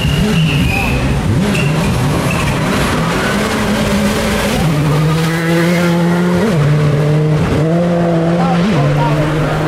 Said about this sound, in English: Impreza STI, two-door, popping and banging as it goes away into the forest. Nice.